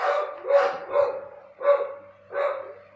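Dogs bark in four loud, evenly spaced bursts over a few seconds, each bark sharp, with no talking underneath.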